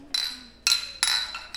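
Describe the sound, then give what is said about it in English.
Three bright clinks of glasses tapping together in a toast, each ringing briefly before the next, crisp with a quiet background. “I can't open this. I'm like too weak and feeble. Cheers.”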